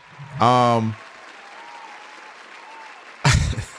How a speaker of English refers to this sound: I'm giving a round of applause to her again.